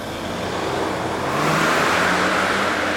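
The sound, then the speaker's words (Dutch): A Mercedes car engine revs loudly in Kanaleneiland, near the Prins Clausbrug, its throaty roar swelling about halfway through and then holding steady over a constant rush of road noise. No voices are heard. “Er is iemand die wil laten horen dat hij in een Mercedes rijdt.”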